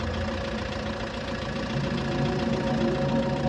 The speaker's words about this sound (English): I always make mention of the Half-Life tram, but this is the level of Half-Life where you're in like the little mine car thing and you gotta drive it around. It's very dark in this tunnel.